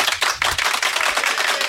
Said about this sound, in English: Thank you, Army, and the Tri-Forces. We need to give a round of applause to these guys.